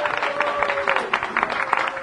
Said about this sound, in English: So kudos to you guys. Round of applause.